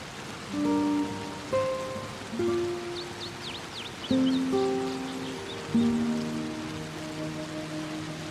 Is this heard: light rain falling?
yes